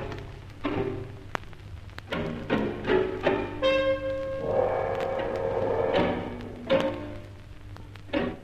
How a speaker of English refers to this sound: It seemed that whoever was trying to enter the flat was testing a number of keys. The tension mounted as some half dozen keys failed. Then, the lock turned.